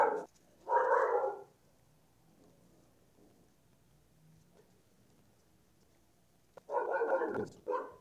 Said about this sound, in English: Dogs are barking over there.